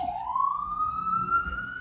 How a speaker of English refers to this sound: It irks the police too. Police, they're upset. Oh, I gotta turn my sirens on